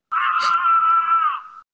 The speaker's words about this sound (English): Do we hear screaming in the distance? You do.